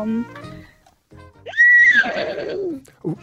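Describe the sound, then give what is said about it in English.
A 14-year-old caller from Campbelltown imitates a horse's neigh on a radio phone-in: a high, wavering whinny rising sharply then trailing off into a breathy, fluttering snort, fairly loud, with brief voice sounds before it. “All right, and give us your animal noise. Okay, so I can do a horse.”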